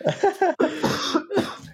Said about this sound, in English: Yeah. Oh, I had to cough.